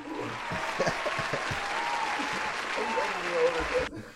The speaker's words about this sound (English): just for the sake of the podcast, I'll give that an applause.